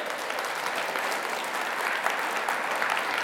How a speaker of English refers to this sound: Let's give our volunteers a round of applause.